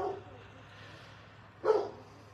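A single sharp dog bark rings out against a low steady hum at a police homicide scene in Portsmouth, with a fainter bark or yip at the very start.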